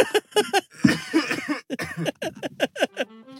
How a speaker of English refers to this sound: I just got mead down the wrong hole, coughed, and it went up the back of my nose, and my fuck, it burnt.